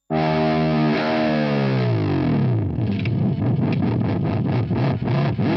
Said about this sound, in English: So that, yeah, when people talk about a dive bomb, it's just hitting usually an open string and just pressing the whammy bar down as far as it'll go.